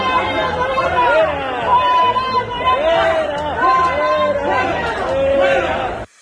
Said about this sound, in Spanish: Aeropuerto Internacional de la Ciudad de México, debido a que usuarios le reclamaron porque no estaba usando el cubrebocas. Noroña reaccionó así. En silencio. Algo increíble, ¿verdad? Pero sí, se quedó calladito. Y mientras, la gente le gritaba así.